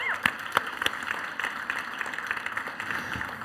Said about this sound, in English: And so can we just welcome them into this conversation today by giving them a round of applause?